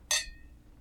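Cocktail glasses clink together in a toast to a new season, in New York, one bright ringing chime that fades over a few tenths of a second, followed by a much softer second tap. No one speaks.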